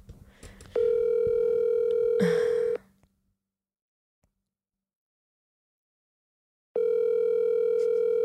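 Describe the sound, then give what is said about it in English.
Outgoing phone call ringing tone: a loud, steady electronic buzz lasting about two seconds, then a long silent gap, then the same ring starting again. No one speaks. “Why can't people pick up on the first ring?”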